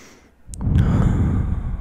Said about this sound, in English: In through the nose, three counts.